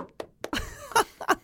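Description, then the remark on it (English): A voice imitates a door slamming to act out walking out: a quick run of sharp, punchy bursts, ending with two louder, throaty bangs, fairly loud. “Make a sound of a door slamming, because I'm walking out.”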